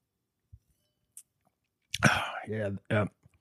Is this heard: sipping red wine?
yes